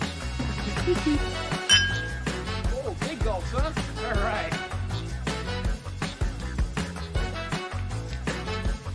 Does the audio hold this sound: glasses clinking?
yes